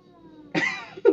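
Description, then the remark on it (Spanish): An angry cat lets out a harsh hissing growl, followed a moment later by a second, shorter snarl, with quiet background before it. “Mira lo bonito que es ese gato. Está bravo.”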